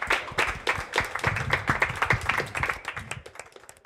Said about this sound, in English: So thank you so much for coming, everybody. Please give yourselves a round of applause as well.